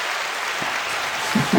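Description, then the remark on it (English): Dense crowd applause with cheering fills the short clip, a steady wash of clapping hands that swells slightly near the end, a canned sound effect played from a soundboard. “We're cheering you on,”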